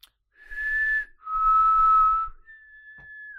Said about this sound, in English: What is their whistle?